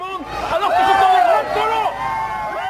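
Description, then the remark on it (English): A dense crowd at a demonstration in the capital Antananarivo roars and chants together, many voices overlapping in a loud, sustained swell with rising shouts, as Kemi Seba, a popular yet controversial figure from Benin, stirs up the crowd. “And the presence of a popular yet controversial figure from Benin to stir up the crowd called Kemi Seba appeared to mark an escalation in their campaign.”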